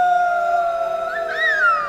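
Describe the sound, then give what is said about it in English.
A voice imitates the howling wind of a storm, a long, steady, wavering 'oooo' that slides higher and swells near the end before easing down. It is fairly loud, with no other sounds. “And the wind can howl.”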